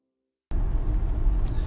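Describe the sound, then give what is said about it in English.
A steady low rumble of road noise from inside a moving car begins abruptly after a brief silence and continues at a constant level. “In this short podcast, we're going to talk about, topics while I'm driving to my client's house or to a job site or anywhere related to design.”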